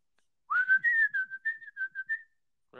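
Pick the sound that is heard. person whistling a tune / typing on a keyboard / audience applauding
person whistling a tune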